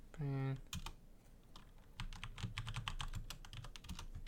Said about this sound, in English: It's an interesting podcast to listen to someone type.